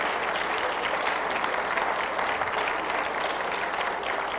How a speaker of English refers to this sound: You know what? Let's just give the Lord a clap offering and praise Him.